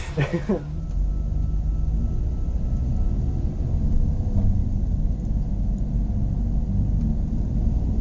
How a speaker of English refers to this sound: I get in the car. All right. Let's drive. Okay. And faster.